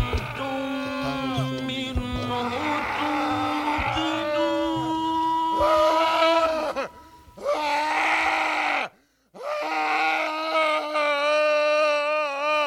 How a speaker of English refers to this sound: The sound of that man screaming is none other than the founder, or one of the founders of Fluxus, named Dick Higgins from 1962. A series of his entitled Danger Music. We are listening to Danger Music number 7.